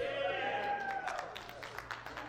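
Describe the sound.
A church audience, few of them women, cheers and whoops on a Father's Day Sunday morning, a few voices holding a long falling "woo" over scattered clapping, fairly loud.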